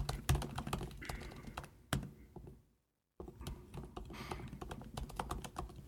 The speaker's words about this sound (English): What are you typing? It will not. Yeah, I think there's a limit to how many. It won't let me do numbers. House hunting, Wisconsin is what I've typed in.